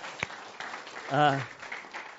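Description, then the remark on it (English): An audience claps for a man's 90th birthday in a dense, steady patter for a couple of seconds, with a brief voiced cheer rising out of the applause midway. “And so so I guess you clap for 90, you know.”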